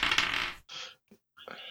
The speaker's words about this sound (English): That was a lot of dice.